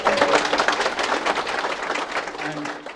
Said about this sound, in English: At that point, may I just say many thanks to the panelists for this final session. If you'd like to give them a round of applause, please.